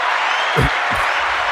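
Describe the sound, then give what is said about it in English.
A dense wash of crowd noise, like applause and cheering, fills the whole moment at steady loudness, with a couple of low thumps breaking through near the start. “Oh, the cheering, adoring crowds.”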